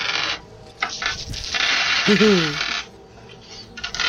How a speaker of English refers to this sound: Yeah, that was a lot of dice just fell out of my bag. That wasn't a roll, was it? Like, Jesus, how many dice fucking got?